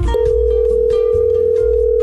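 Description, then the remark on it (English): A loud, steady telephone dial tone starts almost immediately and hums on unbroken for about two seconds, with a faint low rumble underneath and no voices. “Let me dial the phone number.”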